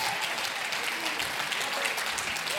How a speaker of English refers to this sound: Come on, if you're excited about it, jump to your feet and clap your hands and shout, there's a summer harvest.